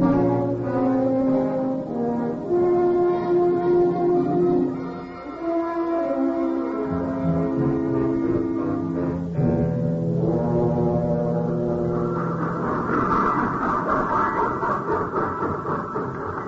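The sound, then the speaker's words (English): An old train locomotive with cobwebs on it whistles loudly, sounding long, sustained, chord-like blasts with a brief dip in the middle and a hissing rush toward the end. “First train I ever saw with cobwebs on the locomotive.”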